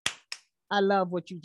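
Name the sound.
hand clapping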